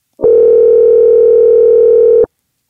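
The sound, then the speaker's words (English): A single steady electronic ringing tone of an outgoing phone call to a friend holds at one pitch for about two seconds, loud and clear with no other sounds, then cuts off into silence. “So now it's time for a segment of the podcast called Phone a Friend, where we do just that.”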